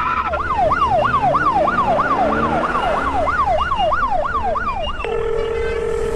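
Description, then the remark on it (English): A police car siren on a police escort wails in a fast, steady yelp, rising and falling about three times a second for five seconds before switching to a flat, steady tone, loud over a low road rumble. “Not with a police escort, buddy. Light them up, Switchblade.”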